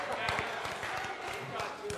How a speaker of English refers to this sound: Why are you clapping?